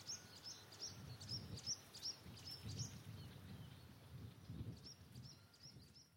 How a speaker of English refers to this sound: You can hear a background chorus of reed warblers. Chip-chop, chip-chop, chop-chop, chip-chop, but this little guy's really, he's really going for it.